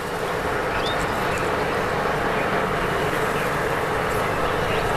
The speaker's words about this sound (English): you could see, there was just these vibrant green rows of olive trees or almonds, row upon row of these basketball-sized pumps sitting in the river, almost going all day. And that was an interesting sound to hear. It was just this constant whirring.